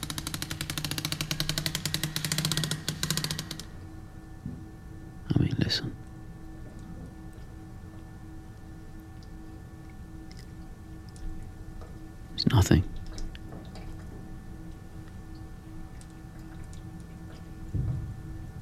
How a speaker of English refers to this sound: Is the sound of boiling water like moving through them. Someone needs to bleed it.